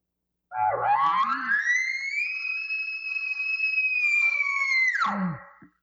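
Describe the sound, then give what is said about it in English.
A hunter's imitation of a standard bull elk bugle, the tone a bull makes when seeking cows in heat. It starts with a low rough growl, sweeps up into a loud, sustained high whistling tone for several seconds, then drops sharply at the end. No talking. “And so when he's doing that, this is the bugle tone that you will hear right here.”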